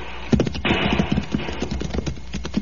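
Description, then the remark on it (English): Horses' hooves, including those of the horses Diablo and Loco, clip-clop in a quick, uneven rhythm as the riders jump their horses over a boulder on a trail, several animals moving at once over a steady hiss of background noise, moderately loud, with no voices. “Jump your horse over, amigo. I think the horses can just about make it.”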